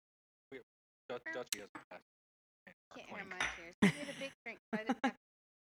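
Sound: shot glasses clinking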